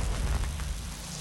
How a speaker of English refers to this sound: I threw a grenade in the water.